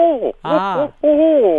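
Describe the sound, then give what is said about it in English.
A person imitates a barred owl's 'Who cooks for you? Who cooks for you all?' call: three loud, drawn-out hooting phrases with wavering, sliding pitch, separated by brief pauses. “Okay, so barred owls. And what kind of sound do they make?”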